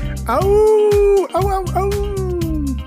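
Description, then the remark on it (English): A person howls like a wolf: two long, loud, drawn-out wavering notes with a brief break between them, the second sliding slowly downward as it fades. “Wolf, get it?”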